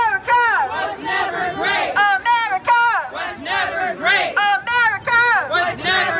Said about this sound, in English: But the crowd of social justice warriors kept growing, and eventually, on loudspeakers, they completely disrupted our event.